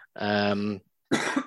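A loud cough: a long, rough, voiced hack, then after a short pause a burst of harsher, breathy coughing, with nobody speaking.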